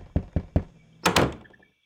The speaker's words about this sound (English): Hark, hark, one knocks.